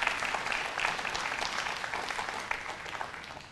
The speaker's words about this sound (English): I want to invite my wife up to the stage this morning. Y'all give her a hand clap as she comes this morning.